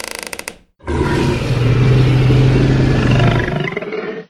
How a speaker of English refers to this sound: is that what I thought it was? That noise? It's a T-Rex